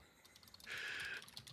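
Rapid clicking of keys on a computer keyboard, with a brief louder burst in the middle and no voices.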